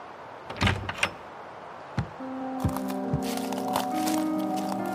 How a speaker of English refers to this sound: The snow had just begun to fall when Jonas opened the tired wooden door of his cabin and stepped outside, the warmth at his back swallowed instantly by the chilled mountain air.